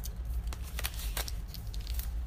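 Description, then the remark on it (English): The little tear tab on the packaging of a Magic Keyboard being ripped open, heard as a quick series of rough, crackly papery bursts of similar loudness, with no one speaking over the sound. “This is the magic keyboard, and it also has the little tear tab.”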